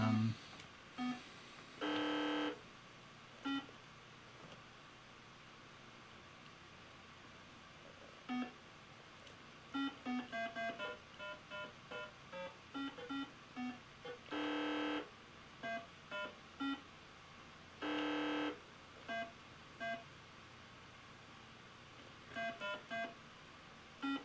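Electronic beeps sound in an irregular pattern: a few longer, buzzy tones mixed with runs of quick, short bleeps, fairly loud over a low background hum.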